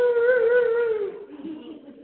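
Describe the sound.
A person imitates a dog's howl, a dog joining in while someone praised God: one long, steady 'aroo' that holds its pitch for about a second, then slides lower and trails off into a softer, breathy tail.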